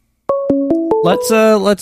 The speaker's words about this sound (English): Whoa. I got a phone call coming in.